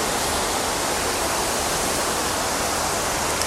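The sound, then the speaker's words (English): Steady, continuous rush of flowing water from a stream or waterfall, a dense even hiss with no breaks and no voices, as the water is photographed with a four-second exposure at f/22. “That should get the water all smooth in the foreground.”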